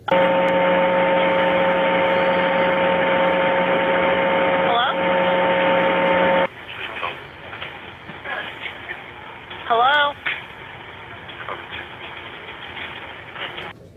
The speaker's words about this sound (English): August 11th, just before 3:30 in the morning, the Police Department Communications Center got a call that they refer to as abandoned, meaning the other person hung up. So they called back, got an answer, and heard mostly static.